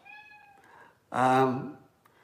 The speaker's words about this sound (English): If you're hearing my cat in the background, she's making noise. Hey, Boo, come on up here.